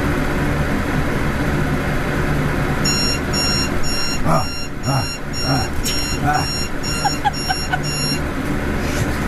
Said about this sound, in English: This is what it is like when I wake up because I recorded it all the way through to the alarm.